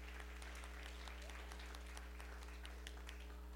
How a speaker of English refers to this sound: Before you rise, yes, go ahead and clap.